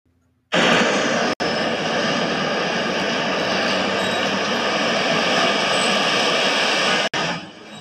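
A train runs along the tracks in a film, a loud, steady roar for about seven seconds, with a thin high-pitched metallic squeal over it and two brief cuts in the sound; the sound marks scene changes in the film. No one speaks.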